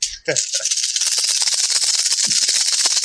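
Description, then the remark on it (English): A handful of dice clattering and rattling steadily for about three seconds, a bright, busy stream of rapid clicks with a brief thud at the start. “I will now roll the dice.”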